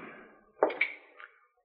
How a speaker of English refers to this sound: Why, Marshal, I thought I heard somebody knock. You did.